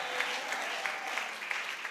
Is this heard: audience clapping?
yes